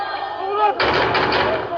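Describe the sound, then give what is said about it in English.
Shouting voices of a crowd of protesters at the US embassy in Sana'a, Yemen, give way to a loud, sustained burst of gunfire as Yemeni security forces fire into the air to disperse them, the rapid crackle continuing over the commotion. “Yemen security forces fired into the air to try and disperse the crowds.”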